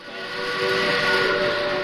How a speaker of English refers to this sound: It was quite an experience to have one of those locomotives go past you with the whistle screaming and the smell of the coal smoke and the oil and the exhaust sound.